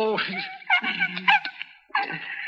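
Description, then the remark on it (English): A sick dog whimpers and whines in a few high, wavering bursts, its pitch sliding and trembling, with a brief pause before a final plaintive whine. “He's an awful sick dog.”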